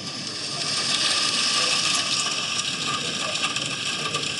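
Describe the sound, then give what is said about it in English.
A recording of steady, dense patter of medium rain drumming on a tent, a continuous hissy wash of drops with no pauses, holding an even loudness throughout with no voices. “I've got it on rain on tent and medium rain.”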